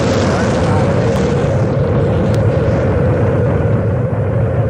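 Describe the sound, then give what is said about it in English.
A rocket's main engines roar with a loud, constant, deep rumble that fills the whole stretch, rough and crackling, without pause or change in strength. “6, 5, 4, we've gone for main engine start, we have”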